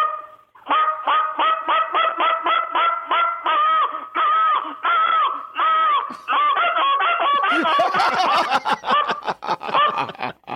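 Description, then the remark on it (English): A person imitates goose calls with their natural voice rather than a goose call device: a steady run of loud honks that speeds up into a rapid, excited cackling chatter toward the end, with no talking. “Was that a goose call or your natural voice that you just did?”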